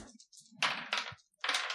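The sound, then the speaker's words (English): Players each roll two dice during a game of Fiasco, giving a short burst of hard, bright rattling and clicking, a brief pause, then a second clattering tumble, with faint low murmuring underneath. “Okay, so we're going to have everybody roll your two dice, please.”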